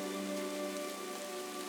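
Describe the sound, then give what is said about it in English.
Soft, steady rain falls outside with an even hiss and no distinct drops standing out. A faint, constant hum sits underneath, and no one speaks. “And so I get soft rain because it's not hard rain today.”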